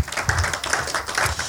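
An audience claps their hands for Jesus, a dense, steady patter of many overlapping claps with a loose rhythmic pulse, fairly loud and without any voices over it.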